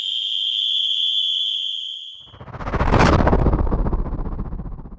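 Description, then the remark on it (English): A loud, shrill whistle, blown as a signal in a camp, holds one steady piercing note for about two seconds, then cuts off as a heavy, roaring blast swells and rumbles on to the end. “The shrill whistle cut through the chatter. The signal had been given.”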